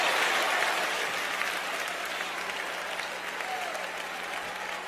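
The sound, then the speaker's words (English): A large church audience claps steadily together in praise during a service, a dense sustained wash of applause that stays loud and even throughout, with faint crowd voices mixed beneath. “Clap your hands and praise him for a breaking of limitation.”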